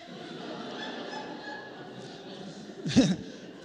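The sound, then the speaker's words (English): A crowd murmurs throughout, then near the end a loud burst of voices barks out "woof" together, people imitating a dog, with a short scattered aftermath of chuckles. “Turn to the person next to you and say, woof.”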